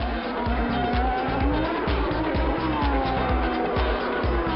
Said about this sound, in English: Nissan Motorsport have been giving some of their sports car drivers a chance to drive the Nissan Altima V8 supercar.